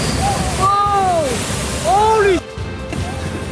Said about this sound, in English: Huge waves in California knocking over onlookers, flooding roads, and damaging homes.